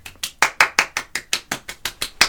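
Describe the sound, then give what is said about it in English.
Steady hand clapping for the Kelce brothers ahead of the Super Bowl, the Chiefs versus the Eagles: about a dozen sharp, bright claps in a quick even rhythm, each one crisp and loud, with no voices. “Can we just take a moment and clap it up for the Kelce brothers?”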